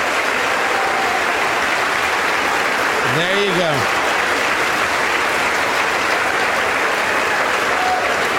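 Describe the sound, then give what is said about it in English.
Loud, sustained applause from a large crowd in the House of Representatives chamber after Mike Johnson of Louisiana is elected Speaker of the House for the 118th Congress, a steady roar of clapping with a brief rising tone and a spoken voice heard over it midway. “Getting applause from everybody.”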